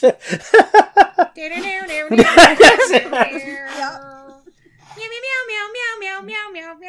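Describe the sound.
A person at home meows a quick banjo-style tune, starting with rapid plucky notes, then a louder, busier burst, and ending with longer, wavering sung meows.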